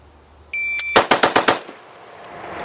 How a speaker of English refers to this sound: He was banging out 5 rounds on an AR under a second.